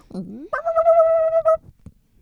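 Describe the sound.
A person imitates the raspy bark of a dog that greets a bird pecking at a bedroom window every morning: a brief rising grunt, then one drawn-out, strained, nasal yelp, loud, with no speech around it.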